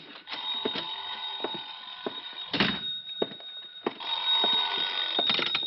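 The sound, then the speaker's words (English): An old-style telephone bell rings in two long, loud bursts separated by a short pause, with a bright metallic jangle and a few dull thumps and knocks mixed in. No one speaks. “Oh, sorry, I think that's my phone.”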